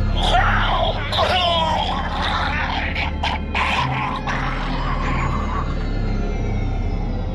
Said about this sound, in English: The sounds of gurgling and spluttering were sent through the phone line as the detective watched the patrol car swerve off the road.